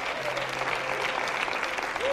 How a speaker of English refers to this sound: Come on, clap your hands and thank the Lord.